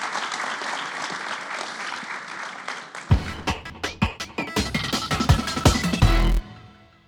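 Audience applause rings out, a dense wash of many hands clapping that swells into sharper, louder claps midway before cutting off and fading quickly.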